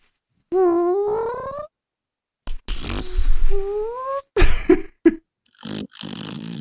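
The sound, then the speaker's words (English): A person vocally imitates about 15 seconds of continuous farting with a string of buzzy, wavering blurts, one long drawn-out raspberry followed by several shorter sputters, fairly loud with brief pauses between. “I feel like we should demonstrate for people what 15 seconds of farting would actually be like.”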